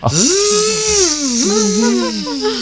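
A voice imitates a kitchen blender pureeing: a loud, steady buzzing whine that rises at the start, wavers and dips in pitch, then drones on for a couple of seconds.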